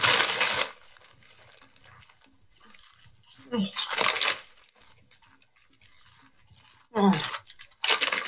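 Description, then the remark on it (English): Loud, bright crunching of someone eating salty chips, several sharp bursts of chewing separated by quieter gaps with faint mouth sounds in between. “How are those chips? They're a little salty.”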